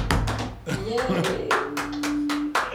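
Brief applause: around ten sharp, loud claps at an uneven, unhurried pace, like a few people clapping, with a voice briefly sounding a sustained tone underneath.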